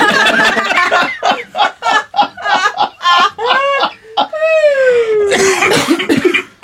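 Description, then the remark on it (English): Loud coughing in a rapid string of bursts over several seconds, mixed with throaty voiced sounds and a drawn-out vocal sweep near the end. “And then there's a round of coughing.”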